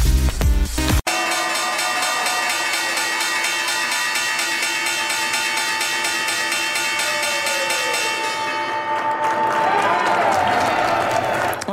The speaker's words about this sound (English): That was the opening bell on this Friday.